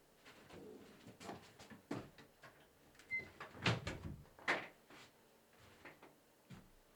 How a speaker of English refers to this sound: Let me just close the door here for a sec.